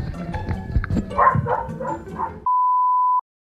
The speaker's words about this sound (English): Do you guys hear my dog barking? I'm sorry. Can you guys hear that at all? She's outside. I could go get her. Let me just go get her. I think she's going to continue to bark.